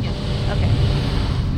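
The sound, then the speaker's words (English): Steady low rumble of a car driving down a mountain in Humacao after Hurricane Maria, following another car a few miles to a house, continuous like road and engine noise from inside the vehicle, with faint muffled voice sounds underneath. “So I'll just follow you guys in my car.”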